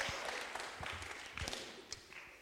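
A short burst of audience applause for a volunteer, dense steady clapping from many hands with a few sharper claps standing out, fairly loud and continuous for a couple of seconds.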